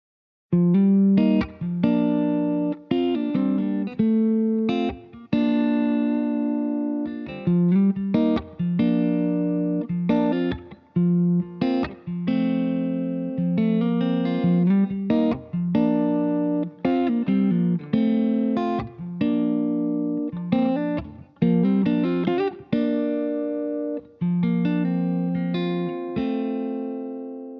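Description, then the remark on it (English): An electric guitar plays a steady run of plucked notes and chords, its close, clear tone trailed by a reverb wash that sounds set farther back. No one speaks. “And what I'm trying to simulate here is that the guitar is close to me, but the reverb is farther away.”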